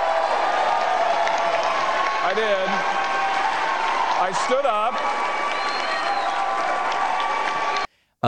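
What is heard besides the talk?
crowd applauding and cheering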